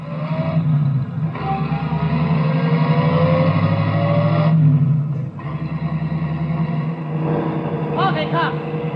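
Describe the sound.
A taxi cab engine drones steadily, its pitch climbing as the car accelerates and drives on, following a sailor on a motorcycle, with a brief voice rising over the motor near the end.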